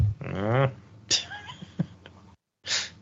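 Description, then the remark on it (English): A cat lets out a couple of drawn-out, wavering meows, separated by sharp breathy bursts and a short silence before a final hiss-like burst. “What are you doing to that cat?”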